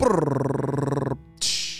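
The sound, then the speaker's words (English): A dog gives a loud, rough, rapidly pulsing bark-growl lasting about a second, then a brief pause and a short hissing burst. No talking. “Woof, woof, woof.”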